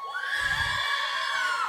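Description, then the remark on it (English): A crowd of middle school girls yells together in a sustained, high-pitched, shrill roar that holds steady and loud for a couple of seconds. “And my middle school girls could just yell for all of them.”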